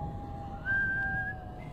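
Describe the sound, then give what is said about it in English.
Ichabod whistles as he approaches a fearful tree: a single steady whistled note rises clearly for under a second, held at one pitch, over a low constant hum and faint rumbling background; no one speaks. “As Ichabod approached this fearful tree, he began to whistle.”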